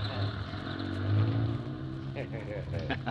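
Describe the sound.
A moving van, turned around and carrying cars inside, revs its engine, its low rumble climbing in pitch as it starts rolling away, with indistinct voices faintly mixed in underneath.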